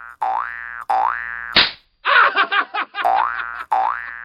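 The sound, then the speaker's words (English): Springy cartoon boings, depicting a giggling Irishman bouncing up and smacking someone, repeat with a wobbling pitch, broken by a sharp slap and a quick burst of giggling before the boinging returns twice more, loud. “I've got an event where suddenly you're just outside of London and a giggling Irishman bounces up and smacks you.”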